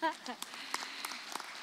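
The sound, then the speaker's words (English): A crowd applauding the tech team, a dense wash of clapping that starts as a voice trails off at the very beginning, then carries on at a steady, moderate level to the end. “And yeah, you can clap for them too.”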